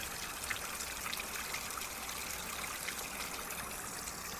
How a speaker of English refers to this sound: We've got a bit of leaking, water leaking there. As I said, it's the top lock is holding the water back.